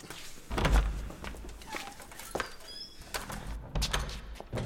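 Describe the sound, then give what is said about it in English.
A heavy door in Tumanbay swings open with a deep thud and creaking, followed by a few scattered knocks and shuffling steps, with faint birdlike chirps in the background. “I advise you open the door. Now.”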